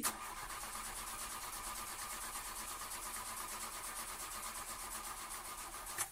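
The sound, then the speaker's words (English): A car filled with Brand X fuel cranks steadily for about six seconds, the starter churning in a fast regular rhythm without the engine catching, then it cuts off. Fairly loud, with no talking. “Nothing. Dead as a doornail.”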